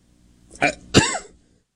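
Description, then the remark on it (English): Two harsh coughs in quick succession, the second heavier and trailing off raspily, with no talking around them. “Sorry, guys, I'm struggling. Can't stop coughing.”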